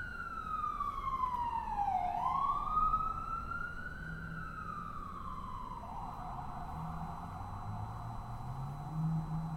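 An ambulance siren wails loudly, its pitch sweeping down and back up as it passes, then settling into a steady, sustained tone with no one speaking.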